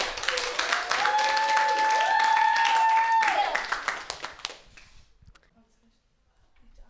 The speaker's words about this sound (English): Our first band today is …. Let's give them a warm round of applause.